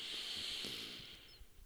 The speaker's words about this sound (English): I listened to myself breathing. Deep breath in.